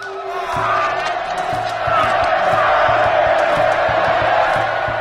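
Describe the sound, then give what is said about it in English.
A large crowd of onlookers roars and cheers wildly, a dense wall of shouting voices that swells after the first half-second and stays loud and sustained, with rhythmic low thumps pulsing underneath. “So they'd cut the beating hearts out of their victims' chests with a razor-sharp obsidian blade, as a crowd of onlookers cheers wildly.”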